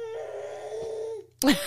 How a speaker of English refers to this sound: Hearing some little baby coos might, I don't know. Baby coos? Baby coos or screams or whatever.